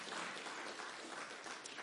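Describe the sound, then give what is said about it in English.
An audience claps for a clinical psychologist seated at the back, a dense, steady patter of many hands, holding at an even level for a couple of seconds with no voices over it. “She's a, yeah, give her a clap.”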